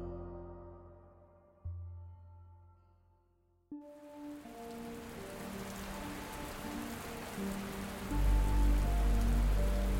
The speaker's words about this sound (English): The rain was pounding the streets when we left to grab some breakfast